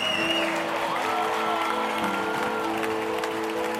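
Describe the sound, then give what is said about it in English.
A crowd cheers and applauds continuously, a dense, steady wash of clapping and shouting voices that stays loud and sustained throughout without any break. “then everyone cheers all at once for the champions.”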